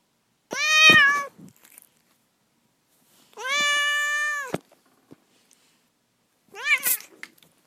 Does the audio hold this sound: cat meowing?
yes